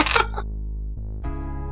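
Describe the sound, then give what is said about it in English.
A ten-sided die (D10) is rolled and comes up 8: it clatters briefly, a quick cluster of sharp plastic clicks that dies away within half a second, over a steady low hum. “I found the D10. I'm rolling the D10.”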